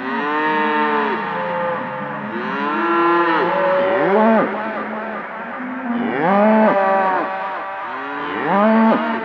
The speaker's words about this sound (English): If you've never heard a herd of cows mooing in unison, stand in the middle of a circle of bass trombonists and instruct them to try and blow your hat off. You will feel the resulting explosion of sound deep in your bowels.